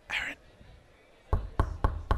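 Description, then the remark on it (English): Four soft, gentle knocks on a wooden door of a room where someone is on a darkness retreat, evenly spaced, following a brief breathy hiss at the start; moderately quiet against a faint background. “Just going to knock gently on his door, his darkness retreat.”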